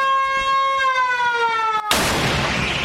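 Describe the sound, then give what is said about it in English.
A steady, high wailing warning siren, sounded by Bukowski before firing his cannon, sags slightly in pitch for about two seconds, then is cut off by a sudden loud cannon blast that leaves a roaring, rumbling wash of noise. “But as a concession to his neighbors, he now gives them this warning signal.”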